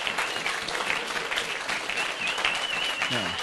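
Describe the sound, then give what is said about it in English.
A church audience stands and claps steadily for themselves, dense overlapping applause filling the whole stretch, with scattered voices and a brief whistle-like tone riding over the clapping. “So why don't you stand up and give yourself a big hand wash or foot wash and stand up and give yourself a clap.”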